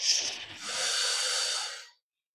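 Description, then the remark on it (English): A slow breath drawn in during a guided breathing exercise, a soft airy hiss lasting about two seconds before fading into silence, with no talking. “So let's do that again, breathing in.”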